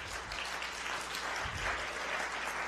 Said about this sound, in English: All right. Well, we clapped for her anyway. We welcomed her in.